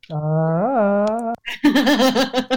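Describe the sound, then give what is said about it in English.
A voice lets out a long, loud sustained yell that lifts in pitch, then breaks into a rapid warbling, yodel-like ululation, imitating a Tarzan jungle call. “That's the Tarzan howl.”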